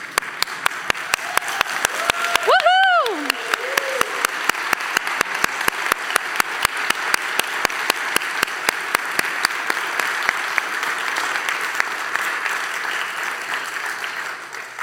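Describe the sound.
A crowd stands and breaks into a long, steady round of applause to God, dense clapping that holds at an even level for the whole stretch, with one high, rising and falling cheer near the start.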